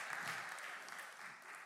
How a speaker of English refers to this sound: I'm getting sporadic hand claps right now. You hear those?